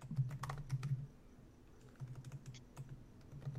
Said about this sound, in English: With me, I hear him pounding away at the keyboard.